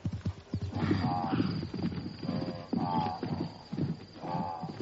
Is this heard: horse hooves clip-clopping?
yes